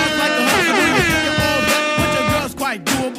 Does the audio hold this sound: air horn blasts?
yes